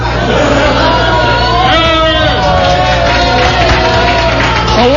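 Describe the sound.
A crowd roars with cheering, shouting and applause, a dense, loud wash of many voices with rising and falling whoops over a steady low hum, lasting the whole time.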